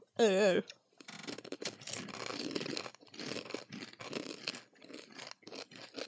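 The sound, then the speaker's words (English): Loud crunching as someone chews on uncooked ramen noodles, a dense run of irregular brittle snaps lasting several seconds after a brief vocal sound at the start. “This is going to be crunchy.”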